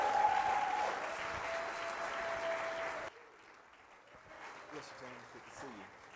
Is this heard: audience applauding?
yes